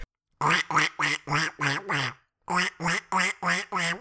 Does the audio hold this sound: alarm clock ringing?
no